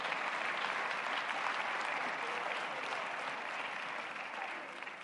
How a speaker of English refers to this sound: Let's give our choir another hand clap.